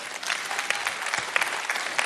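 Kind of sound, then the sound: crowd, audience applause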